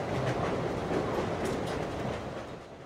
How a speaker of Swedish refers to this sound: därför sitter jag och min producent Tanvir på ett tåg mot Göteborg